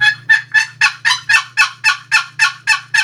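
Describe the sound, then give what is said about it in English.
A wooden box call imitates a hen turkey's spring yelp: about eleven raspy, evenly spaced notes in a quick steady rhythm, loud, over a faint low hum. “Let me show you. Okay, here's a hen yelp that we do it, you know, spring.”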